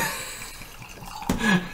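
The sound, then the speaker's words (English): Tequila pours into a Riedel glass, a steady splashing trickle that swells louder and brighter near the end of the short pour, with no one speaking. “another Riedel. Alex, if you would do the honors.”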